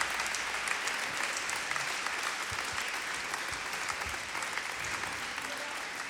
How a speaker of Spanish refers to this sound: Aleluya, dale un aplauso. Alaba a Dios.